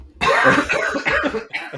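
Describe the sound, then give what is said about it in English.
A loud fit of coughing: several harsh, raspy coughs in quick succession with a short pause before the last one. No talking. “First of all, cough warning.”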